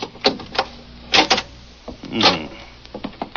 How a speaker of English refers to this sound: Now, come on. I'll try the door. Don't knock, it may be open. Okay.